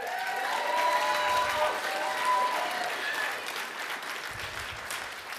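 A crowd applauds steadily with scattered cheers and whistles, a dense wash of clapping that holds for several seconds and eases slightly toward the end.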